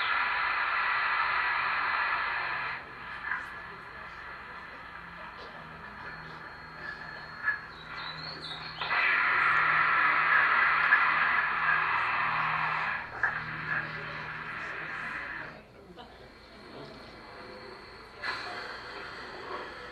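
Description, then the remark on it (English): A male animal hisses in long, forceful breathy blasts, several of them, each lasting a few seconds with brief pauses between as it expels all the air from its body with each hiss and then pumps itself back up. The hissing is fairly loud, with no talking. “You will notice he expels all the air out of his body with each hiss, and then he has to pump itself all back up full of air.”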